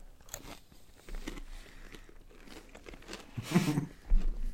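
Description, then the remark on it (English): Someone crunches on barbecue-flavored chips with a string of crisp, irregular bites and chewing crackles, fairly quiet at first and swelling into a louder, denser burst of crunching near the end. “Have the barbecue flavor off the bat.”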